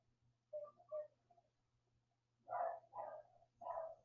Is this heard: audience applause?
no